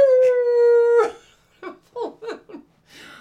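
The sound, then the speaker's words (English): Several people outdoors under a full moon imitate a wolf howl: one long, steady, sustained howl, then a quick series of short, falling yips and yelps, loud before fading out. “And we all started howling.”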